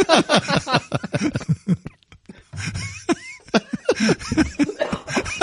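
Bursts of harsh coughing come in quick clusters, broken by a brief pause, with laughter-like sounds mixed in. The coughs are fairly loud and irregular in rhythm.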